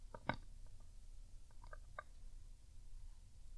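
A cat gnaws on a wristwatch, producing a few soft, scattered clicks and crunchy nibbling sounds against a quiet, low hum, with no talking.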